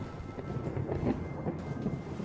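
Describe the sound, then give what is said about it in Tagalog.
Loud, rolling thunder rumbles steadily at night, a deep continuous roar that swells slightly midway without breaking. No voices are present. “Kumukulog na nga ng malakas.”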